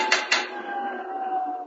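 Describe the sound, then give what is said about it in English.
Someone leaning over a rail raps twice on the window glass, two quick, sharp raps a fraction of a second apart, followed by a faint high ringing that lingers and fades. No voices are heard. “Lean over the rail, rap on the window.”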